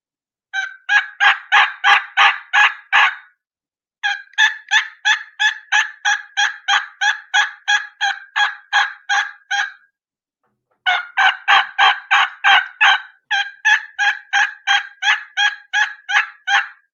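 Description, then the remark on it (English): Three runs of rapid, evenly spaced turkey hen yelps made on a game call, imitating two different hens in sequence: a transition yelp, then a higher-pitched yelp with the rasp taken out. Clear, each series of a dozen or so notes separated by short pauses, with no talking. “So I'm going to do the two different hens side by side in sequence so you can hear the differences.”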